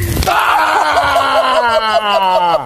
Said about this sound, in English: Yeah, that was Deontay punching out the mascot for the show. Allegedly broke the jaw of the guy inside. Wilder claims he didn't know that anyone was actually in there.